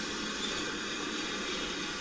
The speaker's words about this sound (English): The locomotive passing me now is a 9F, number 92212, going to attach to the rear of the train that's going down to Alsford.